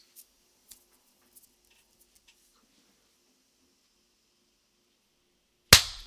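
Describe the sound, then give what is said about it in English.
After a few faint ticks and near silence, a single sharp, loud hand clap lands at once, sounding like several people clapping together as a sync marker, timed for 20 seconds past 12:40, with a brief ringing tail. “Let's clap at 20 seconds after.”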